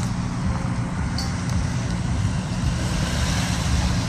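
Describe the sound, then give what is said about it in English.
Steady rumble of street traffic, with cars going by and a constant low road noise filling the background for the full few seconds, no voices standing out. “Would you please pull me up to the street so we can ask the cars to stop?”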